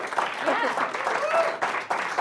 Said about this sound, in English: Can we do a little bit of a round of applause?